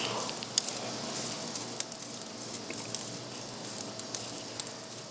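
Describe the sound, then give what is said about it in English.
Steak sizzling on a charcoal grill: a steady, hissing crackle with scattered sharp pops and spits, fairly quiet, with no one talking. “Takes a little bit to start sizzling, but trust me, it will.”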